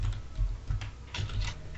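Quick, uneven keystrokes on a computer keyboard, fairly quiet, with irregular clicks and soft thumps in a steady flurry, no voices present.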